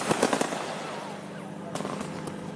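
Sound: fireworks exploding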